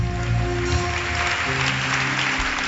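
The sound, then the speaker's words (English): A crowd claps hands continuously for Jesus, a dense, steady patter of many overlapping claps, over a sustained low droning tone that holds throughout. “Begin to clap your hands together for Jesus.”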